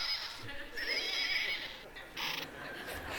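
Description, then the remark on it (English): A horse whinnies once, a bright, quavering neigh that rises and trembles for about a second, followed by a softer snort or breathy call, moderately loud with no talking. “So one of our elders, knowing that I didn't have a horse, went and got a horse for me. And can you hear this? Can you hear that?”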